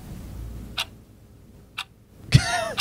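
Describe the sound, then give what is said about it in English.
Two crisp clock ticks land about a second apart, then a sudden louder, throaty burst like a cough cuts in at the end. “Can we get that clock ticket on the podcast?”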